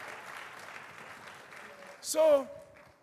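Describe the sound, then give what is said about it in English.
An audience claps for Jesus in a steady, dense patter that fades slightly, then a loud voice breaks out in a brief shout or cheer near the end. “Please clap for Jesus.”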